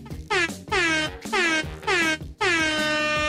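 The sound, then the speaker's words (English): Several loud air horn blasts in quick succession, each a brassy, harmonic-rich honk, the last one held a little longer and ringing out without any voices. “That gets multiple air horns.”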